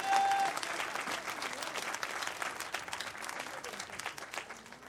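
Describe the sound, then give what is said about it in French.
A church audience applauding the Lord, with dense, steady clapping from many hands that holds at an even loudness for the full few seconds, with no speech rising above it. “Et me demande pour applaudir le Seigneur pour ça.”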